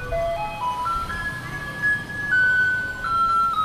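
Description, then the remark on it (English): A garbage truck in Taipei, Taiwan plays a tinny electronic melody, A Maiden's Prayer by Polish composer Tekla Baranowska, a bright, stepping tune of sustained notes over low engine rumble, heard outdoors. “In Taipei, the capital of Taiwan, the trucks also play this song.”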